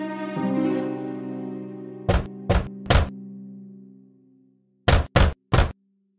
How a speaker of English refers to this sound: When he saw Mother Goat leaving, he waited a while, and then he came in front of the cottage and knocked on the door.